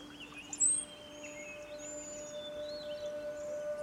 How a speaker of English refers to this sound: there is a large amount of birds chirping, signifying it is morning.